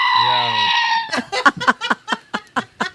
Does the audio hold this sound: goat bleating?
yes